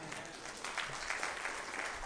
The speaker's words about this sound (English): Come on, somebody clap.